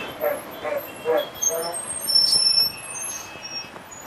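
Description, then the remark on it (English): A large double-decker, open-rooftop BEST local city bus in Mumbai rumbles in street traffic, and a short sharp hiss of air brakes cuts through midway. Voices murmur in the background. “We turn around to see the well-known BEST local bus of Mumbai.”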